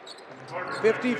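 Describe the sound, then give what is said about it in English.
A basketball bounces on a hardwood court as Clarkson dribbles during a Jazz game, two quick thumps close together over a steady wash of arena crowd noise and faint voices. “Outlet to Clarkson, high right hand dribble, switches to his left, goes between the legs six, seven, eight times, hesitates”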